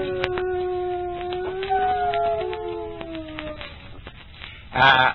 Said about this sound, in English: My dog, Whiskers, he played the part of the coyote, and he knows he did a good job